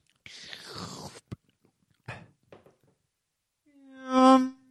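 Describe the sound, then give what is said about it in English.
Someone takes a drink: a noisy sip, a click, then a couple of soft swallowing gulps, ending in a brief voiced sigh. “I'll have a drink first, won't I? Yep. A drink. Gulp.”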